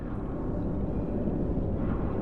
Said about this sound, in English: As we're escorted down into the lower levels of the structure, we can hear the rumbling of machines, conveyors, and assembly lines.